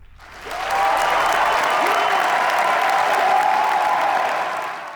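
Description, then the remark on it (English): A crowd of approximately 1,000 people seated in an auditorium bursts into loud, sustained applause as Ben Shapiro jumps on stage, swelling within the first second and holding steady as a dense wash of clapping, with some cheering mixed in, before tapering slightly at the end. “Once the doors opened, approximately 1,000 people were seated inside the auditorium, and then Ben Shapiro jumps on stage. The crowd erupts.”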